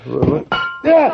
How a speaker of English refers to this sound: Heavens! Oh, I'm terribly sorry. How very clumsy of me. I seem to have knocked over the table and... Oh, dear, there's water and fruits all over... Yes, I hope it's not too expensive a carpet.